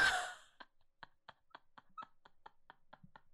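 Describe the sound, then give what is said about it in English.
A single harsh cough bursts out at the start, followed by a steady run of faint, evenly spaced short sputters fading into quiet. No talking. “Because I just said 90-degree bend and you leaned out to cough.”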